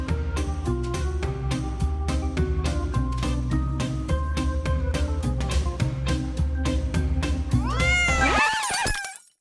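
A steady, rhythmic music track plays throughout, then right at the end a domestic cat sitting in a person's lap lets out a few short, breathy meows over the fading music.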